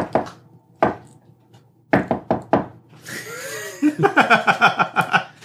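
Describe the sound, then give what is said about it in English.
Sharp knocks on a locked, street-level wooden door in a patterned rhythm: two spaced raps, then a quick run of four, followed by a burst of voiced chuckling or humming. “Think of that secret knock?”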